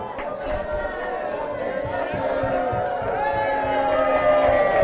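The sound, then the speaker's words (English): A crowd of voices cheers and shouts encouragement together for a participant in a timed challenge, a dense, steady wall of overlapping calls that holds at a fairly loud level and swells slightly toward the end. “You can sort of cheer if you want.”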